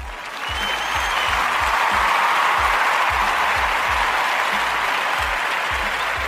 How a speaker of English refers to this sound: I feel like this is the part where we give ourselves a round of applause for dreaming and achieving.